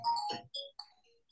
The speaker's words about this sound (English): But hang on, do you want me to get rid of this phone? I'll silence it.